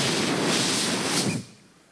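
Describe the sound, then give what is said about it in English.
A voice imitates a helicopter swerving away after two flares shoot out from its small wings at the border of Baghdad: one loud, breathy rushing whoosh, held for over a second, then cut off abruptly into quiet. “And then the helicopter went...”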